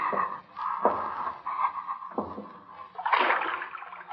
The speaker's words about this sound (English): Go down again. See if water's deep. Wade through water if it isn't deep.